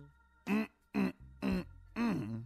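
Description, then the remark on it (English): A man preaching a sermon clears his throat with four short, rough, gravelly bursts in quick succession, each about a fraction of a second long, evenly spaced with brief pauses between. “Let me clear my throat.”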